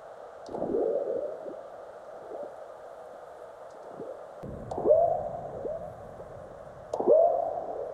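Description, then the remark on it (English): Seismic recordings of earthquakes from stations in North America and Central Asia, sped up 10,000 times and transposed up about 13 octaves, sound like low, frog-like burps and thuds, with quick rising chirps of aftershocks scattered between them over a steady hiss, moderately loud and alone. “Frog-like burps you could hear are earthquakes, large ones followed by the chirps of aftershocks.”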